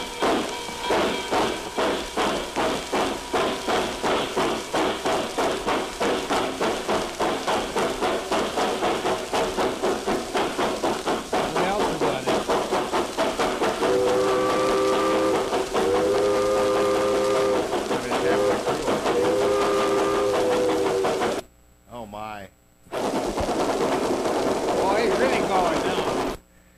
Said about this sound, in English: So that's a little Pickwick record, 1953 ….